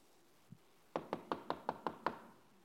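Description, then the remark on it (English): A quick series of seven sharp knocks on a house door in the morning, evenly spaced and fairly loud, preceded by a single soft thump, with no voices. “there's a knock on the door.”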